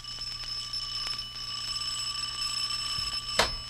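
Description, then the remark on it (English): A doorbell rings steadily with a bright, sustained metallic buzzing tone that carries through the whole stretch, ending with a sharp click near the finish. No one speaks. “Don't you ever answer the doorbell?”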